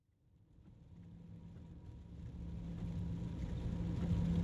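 Heavy rain drums steadily on a car windscreen over a low engine and road rumble as the car drives along a highway to the airport in a late-afternoon storm, the downpour swelling louder as the car drives on. No one speaks.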